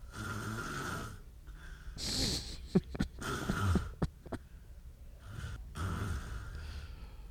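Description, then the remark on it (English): Loud, rasping snores repeat in slow cycles, punctuated by several sharp snorts and clicks near the middle, with no talking over them. “So I'm too busy listening to the snoring to actually keep talking about something else, but maybe I'll try to just keep it down there.”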